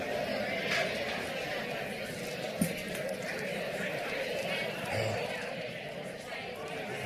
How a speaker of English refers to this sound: If you guys would go ahead and turn around and tell somebody hello and give our amazing worship team a hand clap at the same time.